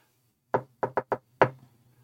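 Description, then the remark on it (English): Room service knocks five sharp knocks on a suite door in a jaunty rhythm: one, then a quick three, then a final louder rap, clear with no talking. “Just a jaunty knock.”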